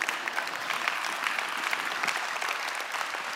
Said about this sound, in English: You could clap there if you wanted to.